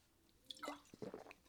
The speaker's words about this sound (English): Awesome or annoying, your podcast host taking sips of water and smacking his lips. Annoying.